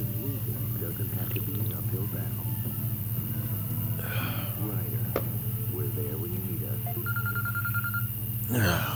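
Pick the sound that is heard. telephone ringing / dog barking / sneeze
telephone ringing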